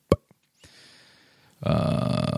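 A long, loud, low rumbling burp holds steady until the end, preceded by a couple of quick clicks and a soft breathy rush.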